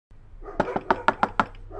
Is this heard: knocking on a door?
yes